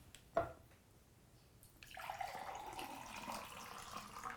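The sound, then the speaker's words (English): A brief clink of glass, then water is poured steadily into a glass for a couple of seconds, the pitch rising as it fills. The sound is clear, with no talking. “Best I can do is some water.”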